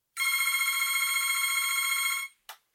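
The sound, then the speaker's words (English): A telephone rings once with a bright, high-pitched, rapidly trilling tone for about two seconds, then cuts off, followed by two brief clicks. No one speaks. “And with this deluge of news on COVID-19, I called him up the other day for help.”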